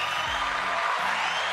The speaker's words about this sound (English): As usual, the crowd here goes crazy at the American Landman Studios, so they're going to like this topic here.